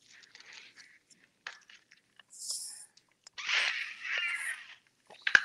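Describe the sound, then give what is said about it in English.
Air hissing and whistling through a water bottle straw as someone takes a drink of water, in several short sucking bursts, then a longer breathy rush with a faint thin whistle, ending in a sharp click. “when I suck on it, there's air flowing through it somewhere because it always whistles like that”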